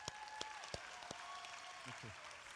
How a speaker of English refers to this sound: Give her a clap.